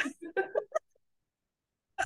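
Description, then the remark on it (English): A quick cluster of short, throaty coughs and hacking throat-clearing sounds, then a pause of silence before a voice briefly begins. “Continue coughing and hacking if you like.”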